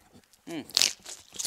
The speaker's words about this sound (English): I like the crunch. We're wearing headsets, so we hear everything.